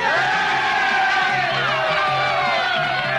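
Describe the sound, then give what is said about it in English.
A crowd cheers and whoops in delight, a dense wall of many excited voices shouting together, loud, sustained without a break for a few seconds. “Delighted cheering.”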